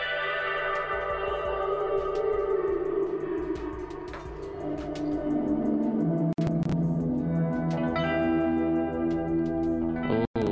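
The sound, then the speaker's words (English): A sustained, fully wet peak reverb wash from a small bandpass filter, with a resonant, band-limited tone whose focus sweeps across the frequency spectrum, harmonic smears drifting and stacking, with two brief dropouts near the end and no talking. “We're going to setting three, which we've got a peak reverb, which is it sets a little bandpass filter.”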